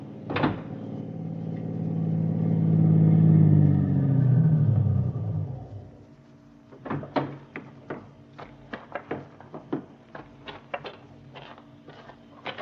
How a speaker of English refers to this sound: That car down there at the foot of the hill just turned in your driveway.